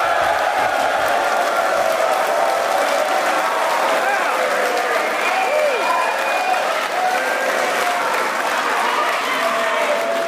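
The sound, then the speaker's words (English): A large live studio audience at a radio broadcast on the campus of the Salisbury School in Salisbury, Connecticut, claps and cheers steadily for about ten seconds, a dense, loud wash of applause with scattered whoops and shouted voices rising above it. “That is a great crowd, I'm telling you. Lots of energy.”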